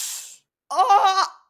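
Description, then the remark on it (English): A voice imitates breaking glass as a redone sound effect in a comedy sketch: a short breathy hiss, a brief pause, then a louder, strained, buzzy vocal crash with bright high overtones that fades out after about half a second. “I'll do the glass sound again.”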